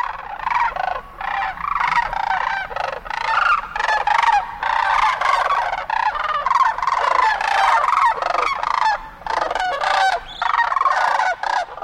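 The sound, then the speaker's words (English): A flock of sandhill cranes, stopped to feed along the banks of the Platte River near Holdrege, Nebraska, calls continuously, their rolling, trumpeting rattles overlapping in a loud, dense chorus of many birds with no pauses and no talking. “Before we go, a quick stop along the banks of the Platte River near Holdrege, Nebraska, where a flock of sandhill cranes has stopped to feed.”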